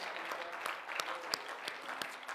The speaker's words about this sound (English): Can you clap your hands one more time and praise God?